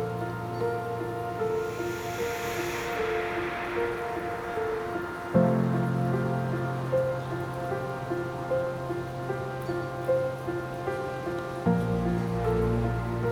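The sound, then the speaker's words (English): Steady pouring rain hisses continuously, a dense, even wash of drops, layered over soft sustained droning tones that shift slightly now and then. No one speaks. “As the crystal rain pours, the stones rise around you, sending healing light pulsating through your body.”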